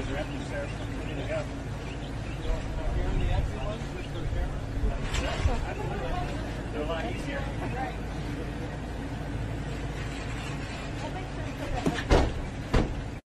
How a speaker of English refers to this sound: He closed the doors.